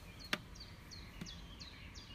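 bird song

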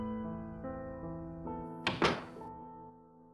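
door shutting

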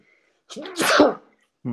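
sneeze

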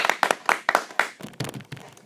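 hand clapping applause

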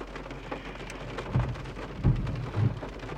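rain falling

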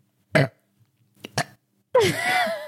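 burp

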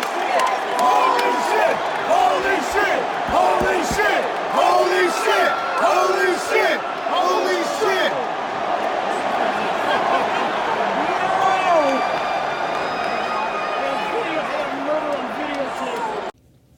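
wrestling crowd cheering

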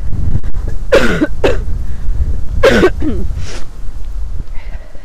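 person coughing

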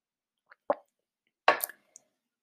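sipping water

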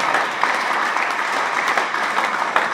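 audience clapping

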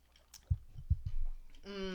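sipping a drink

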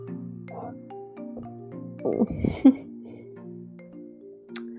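hiccups

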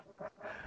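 cough

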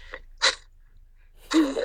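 cough

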